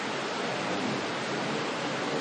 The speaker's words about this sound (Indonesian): Maju tengah-tengah itu malah kena hujan. Di belakang malah nggak kena hujan. Di belakang nggak kena hujan.